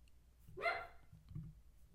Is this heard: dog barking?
yes